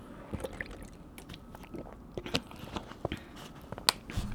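Someone sips and swallows water, with wet mouth clicks and a few soft gulps spaced irregularly over a quiet, faintly hissing background. No one speaks.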